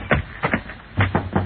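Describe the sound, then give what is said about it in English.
Knocking on a house door: a single rap, then a quick pair, then three more dull, moderately loud knocks in an uneven rhythm, with no talking. “Hey, what you knocking for? This is my house.”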